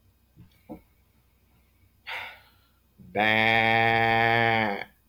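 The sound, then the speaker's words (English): A person imitates a sheep with one long, loud, strained bleat, preceded by a couple of soft clicks and a short breathy huff, the voice steady and buzzing before cutting off. “And the last one, a sheep.”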